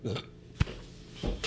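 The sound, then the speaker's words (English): A short, abrupt burp erupts, framed by low, muffled vocal noises before and after it. “Oh, let me tell you, burp is bad after you, oh my Lord.”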